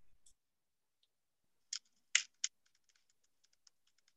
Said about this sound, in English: That would be an open fire burning. Okay, I can hear the crackling. I can hear that.